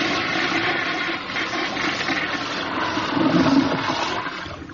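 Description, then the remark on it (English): An old toilet that has been acting up flushes with a steady rush of water that swells slightly toward the end, heard alone without any talking. “This old John's been acting up lately.”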